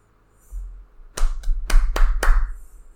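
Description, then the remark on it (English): Five sharp hand claps ring out in an uneven rhythm, fairly loud, over a low background rumble with no talking. “You clapping?”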